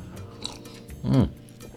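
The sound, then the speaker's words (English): A single short slurping sip of chocolate nut coffee, a brief wet draw of liquid lasting a fraction of a second against a quiet background, with no talking. “Hang on a second, let's have a sip of this chocolate nuts coffee, because we've got some interesting things to discuss today.”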